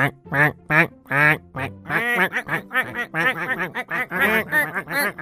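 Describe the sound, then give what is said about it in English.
A burst of duck quacking from a flock gathered in a tree, eating sandwiches spread on the branches: a few separate quacks at first, then many overlapping calls crowding together in a loud, busy chorus. “Soon a whole flock of ducks had gathered in the tree around them.”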